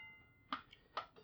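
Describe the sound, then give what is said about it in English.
A die rolled during a tabletop role-playing game clatters onto a plate, giving two sharp, bright clicks with a short metallic ring after each, followed by a few lighter taps as it settles. No one speaks. “I love how it rings when it hits the plate.”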